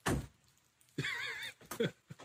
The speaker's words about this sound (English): Each time he does the dad voice, the bear is startled and slams the door shut.